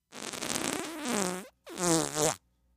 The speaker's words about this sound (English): And juicy wet farts.